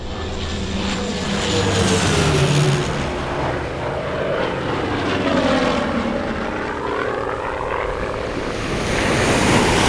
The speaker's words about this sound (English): Now touch down on the water before you enter into a death spiral.